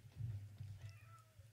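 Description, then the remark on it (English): An upset cat lets out a drawn-out, plaintive meow, crying to be let in, fairly faint over a steady low rumble with no one talking. “The cat. Pudge. He's upset. He's crying. Let him in.”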